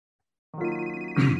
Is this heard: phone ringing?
yes